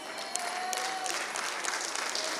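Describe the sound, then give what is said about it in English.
Steady audience applause, a dense wash of many hands clapping at once with crisp, bright texture and no voices, holding an even, moderate loudness throughout. “Well, I think they deserve a better applause than that one.”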